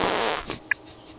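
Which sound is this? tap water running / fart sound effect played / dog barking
fart sound effect played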